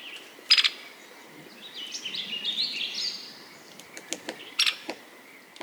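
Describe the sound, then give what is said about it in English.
Sharp, clicky black-backed woodpecker calls ring out, with a loud burst near the start and another near the end, while softer chirping notes and faint ticks fill the quiet outdoor background between them. “Black-backed woodpeckers move into burned forests in the first few months after a fire.”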